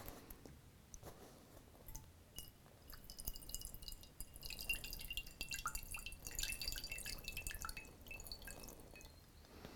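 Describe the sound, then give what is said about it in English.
Water is poured onto a fabric bag, trickling and dripping in a quiet stream of small irregular patters that grow denser and busier in the second half. No one speaks. “So let me do a little more water pouring here.”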